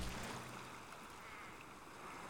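Gentle, monotonous lapping of a mighty river only feet away at a solitary spot, a soft continuous wash with faint ripples and no voices, the level staying even throughout.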